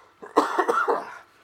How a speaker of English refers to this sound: You ready? Let me get the coughing out of the way as well.